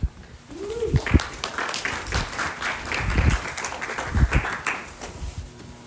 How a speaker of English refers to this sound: Just so you know, I usually wait about 30 seconds for the applause to die down before speaking.